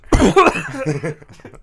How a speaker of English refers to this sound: I like every time you laugh, you cough.